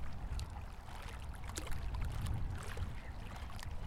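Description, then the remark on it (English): Steady low wash of river water lapping and sloshing, with soft splashy crackles and trickles throughout, a continuous moderate murmur with no voices. “It's just kind of coming up the banks towards us”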